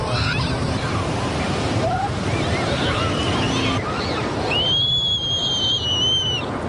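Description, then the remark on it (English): Children shout and play at Iwasawa Beach, open to swimmers for the first time in eight years, beside industrial buildings, over a steady wash of surf, with faint excited voices early on and a long, high-pitched scream rising near the end. “That was kids screaming and having a great time in the shadow of some industrial buildings.”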